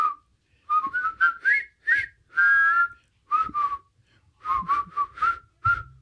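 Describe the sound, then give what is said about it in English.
Several people whistle a melody together in short phrases, the notes rising and falling with brief pauses between bursts, clear with no talking; it is the whistling scene of a film featuring the character Bender. “And then right after this is the whistle. The whistling scene.”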